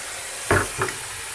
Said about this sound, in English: So I'm going to wash my hands again.